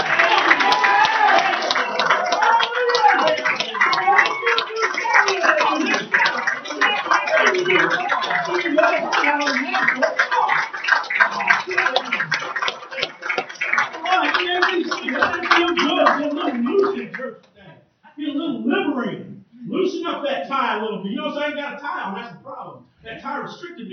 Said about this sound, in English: Everybody stand to your feet, clap, and shout a little bit.